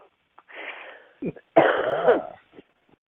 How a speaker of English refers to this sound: So here's, yeah, I got a little bit of a cough